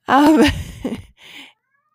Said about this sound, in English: Yeah. And here's my cat saying hello. He'll be all right.